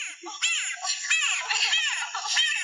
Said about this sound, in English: Yes, that is the Smoky Jungle Frog.